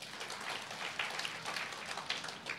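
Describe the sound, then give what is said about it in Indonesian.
An audience at a worship service claps for God in sustained applause, a dense, even crackle of many hands that holds steady for a few seconds without anyone speaking. “Tepuk tangan dulu bagi Tuhan.”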